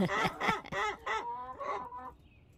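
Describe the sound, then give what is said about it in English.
A Barred Rock hen clucks loudly, a quick run of about five harsh, honking calls that trail off into quieter sounds at the end, with no talking. “Sorry, my Bard Rock's noisy.”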